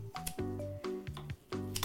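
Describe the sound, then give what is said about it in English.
Scissors snip large pieces of dried seaweed into smaller pieces for seaweed soup, in a handful of crisp, brittle cuts at an uneven pace, heard over a steady low tonal background. “So I'm just gonna go ahead and take my scissors and cut it into smaller pieces.”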